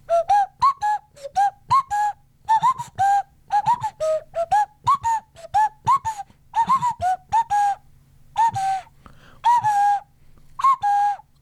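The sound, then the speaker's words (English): A nose whistle plays a bouncy, breathy tune of short, quick notes with brief pauses between phrases, fairly loud, with no talking. “the great perk of which was that he gave me the nose whistle we talked about on our program, and I've now learned to play it a bit.”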